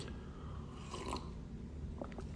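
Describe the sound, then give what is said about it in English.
A quiet sip of hot coffee, with soft slurping and a couple of small mouth clicks before it ends; no one speaks. “Hang on, sip of coffee.”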